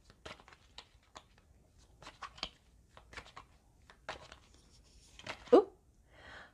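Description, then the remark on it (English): A deck of tarot cards being shuffled for a reading, a string of soft, irregular papery taps and flicks followed by a louder riffling swish near the end, with no talking. “I'm just doing some additional shuffling of the general tea leaf for chapter five so we can see what we get.”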